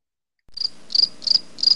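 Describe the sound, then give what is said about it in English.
Crickets chirp in a steady rhythm, with four bright, trilling pulses evenly spaced over a faint background hiss. No one speaks. “I had some crickets from Sas”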